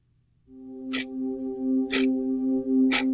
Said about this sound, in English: Now, if your children are listening with you, I beg you to move them away from the radio as the scary, scary synthesizer and the clock of terror combine to weave a web of horror for you in this ad.